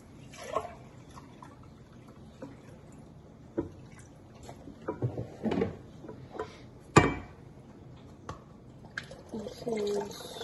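Distilled water pours into a measuring cup, filled to the top line, while making lemonade, in short, uneven splashes and trickles, with a sharp clink midway and faint dripping between pours, fairly quiet.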